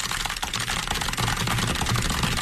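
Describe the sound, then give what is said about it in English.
Fast, continuous typing on a computer keyboard: a dense stream of crisp, irregular clicks at steady loudness, almost like a patter of raindrops, with no voices. “No, I'm saying it sounds like something else if you didn't know that was someone typing.”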